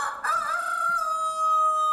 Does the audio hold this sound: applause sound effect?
no